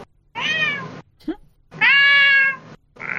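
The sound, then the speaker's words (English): A person imitates a cat yowling muffled inside a backpack: two long, drawn-out wails with a short breathy sound between them, then a third one starting, fairly loud. “Cat noises are the one thing I can do pretty well.”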